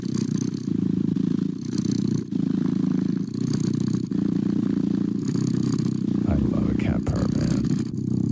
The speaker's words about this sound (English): That's a cat purring.